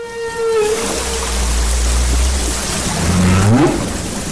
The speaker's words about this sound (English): The money was used to buy equipment, including the microphones that recorded this humpback whale song.